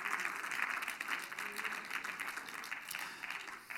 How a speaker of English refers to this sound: Somebody clap your hands and just shout for a moment to the Lord.